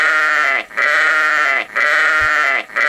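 A sheep bleating sound effect, the "sheeple" sound and an old staple of the Savage Nation program: a sheep bleats loudly over and over, three long wavering, nasal cries with strong harmonics, each separated by a brief gap for breath. No talking is heard.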